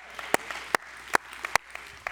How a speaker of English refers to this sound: Come on. Come on. That's a good place to clap, shout, whatever you got.